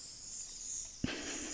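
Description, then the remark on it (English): A soft, steady hiss of a spray mister sprayed over a person, briefly intensifying after a sharp click of the trigger, with a second click near the end and no one talking. “I could tell something was spraying.”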